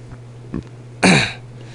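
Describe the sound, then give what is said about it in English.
A single loud, rough burp lasting about a quarter second, its low tone sliding downward, preceded by a faint brief throat sound over a steady low hum. No one speaks. “you burping it up over there, buddy. Burp, burp.”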